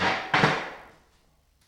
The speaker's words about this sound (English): Trying not to scrape the chair on the concrete. Just pull the chair out.